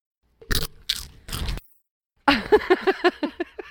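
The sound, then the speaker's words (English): Someone close to the microphone chews a piece of bacon: three loud crunchy bites, a short pause, then a quick run of wet, rhythmic chomps. “Do not chew in front of the microphone.”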